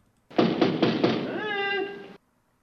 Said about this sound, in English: Okay, so there's banging on the door.